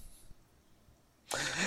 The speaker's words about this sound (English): Breathing heavily.